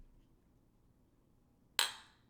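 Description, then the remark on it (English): Two mugs knock together once in a toast, a single sharp clink with a short bright ring that fades quickly after a near-silent stretch. “So thanks, Tots. Yeah. Cheers to you.”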